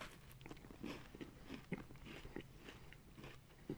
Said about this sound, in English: Let me hear that chew. Let me hear that chew. Just think about how awful that'll be for everyone at home. Just the close-up chewing. That's why I wanted it.